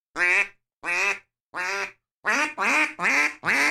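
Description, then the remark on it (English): A duck call blows flat, mallard-style quacks: three loud, evenly spaced quacks, then a quicker run of four, with no talking. “It sounds like a mallard duck in the wild.”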